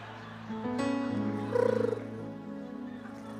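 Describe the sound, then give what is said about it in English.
A voice imitates a woman's soft, purring snore: a steady, low, fluttering hum held for a few seconds, fairly quiet, with no talking. “She purrs.”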